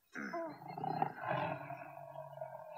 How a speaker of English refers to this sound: Do you hear the growl at the end? That's kind of creepy. Yeah, I know. It sounds like it's him.